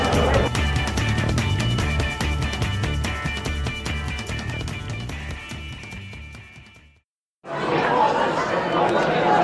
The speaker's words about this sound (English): And there's the final whistle. It's all over. The cheers you can hear are the Tyrone fans, not the Cavan fans.